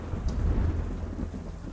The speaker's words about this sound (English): Those of you looking around with alertness, there is a crack of thunder overhead and a bolt of lightning within a second of the...